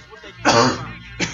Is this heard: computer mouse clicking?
no